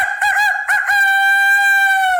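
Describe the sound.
A person imitates a rooster's crow as an animal impression for a contest on Clubhouse: a loud cock-a-doodle-doo with a few choppy opening syllables, then one long sustained wavering note.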